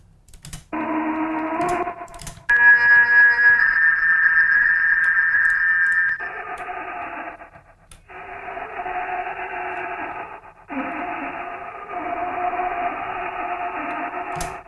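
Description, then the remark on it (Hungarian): Pitched-down, heavily processed drill and street machinery sounds with many effects: loud, droning mechanical buzz in several blocks separated by abrupt cuts and clicks, with a steady high whine in the middle section. No talking. “De hogy több ilyen fúró hang, meg ilyen utcai gépeknek.”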